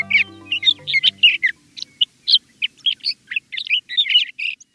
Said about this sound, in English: This glorious song rings out every spring from tracts of sagebrush throughout the West. A male sage thrasher is proclaiming his territory.